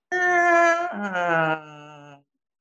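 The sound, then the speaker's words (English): A person imitates a cat's meow in slow motion during a game of Slow Motion Animals: one long, drawn-out vocal wail about two seconds, its pitch stepping down lower partway through before trailing off. No other sounds. “Cat? Yeah, oh, you got cat.”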